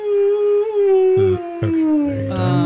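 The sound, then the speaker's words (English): A spooky, drawn-out ghostly howl sound effect holds one long wavering note that slowly sinks in pitch. It is loud, with a few low rumbling bursts underneath. “That ghost reminds us that Dawn is a ghost huntress.”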